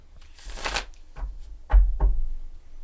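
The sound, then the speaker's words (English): A deck of tarot cards is shuffled: a brisk riffling rush, then a few sharp taps and snaps as the cards are squared back together, with no talking. “Let me shuffle one more time.”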